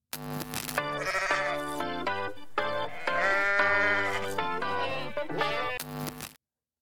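A goat bleats loudly in a long, wavering cry that dips and rises again, repeated in a few drawn-out bursts with no voices around it.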